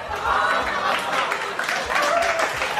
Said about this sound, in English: Crowd was lukewarm on that joke.